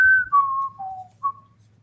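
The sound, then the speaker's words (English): Someone whistles a short snippet of the Jeopardy think music during a classic-film trivia question: four clear, sustained notes that step downward and then lift again on the last, with a faint low hum underneath. “Oh, man, we need the Jeopardy music.”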